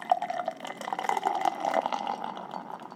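Matchless Dreamsicle Gelato IPA beer pours steadily into a cup for a few seconds, a continuous splashing and gurgling with bubbly fizz, no voices.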